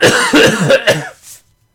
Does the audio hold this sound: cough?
yes